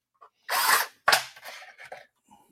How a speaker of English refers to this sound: So I'm just going to tap it real quick. Hand drill.